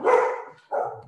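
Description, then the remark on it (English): Two loud dog barks, the first longer and trailing off, followed by a shorter second bark after a brief pause. “Your dog excited about that cryptocurrency.”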